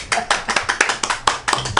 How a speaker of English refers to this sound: Let's have a nice round of applause for David and his mom, Lily.